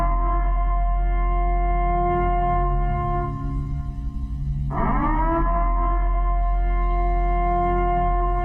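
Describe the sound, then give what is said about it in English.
The warning siren from the film The Purge, played before the killing begins: a loud, sustained drone on a steady, rich tone that lurches sharply upward in pitch about halfway through and holds there, with no voices. “The Purge, but they would play this siren right before everybody started fucking killing everybody.”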